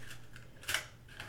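Paper clips being hooked together, heard as faint, close metallic clicks and light scraping, with one slightly louder cluster of clicks midway over a low, steady room hum.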